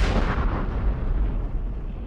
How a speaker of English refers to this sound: And then the bridge explodes. Then the bridge explodes. Add in a bridge explosion sound effect.